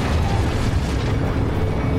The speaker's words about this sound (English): Everything just kind of, shifts suddenly and dramatically. And you feel this gigantic explosion happen.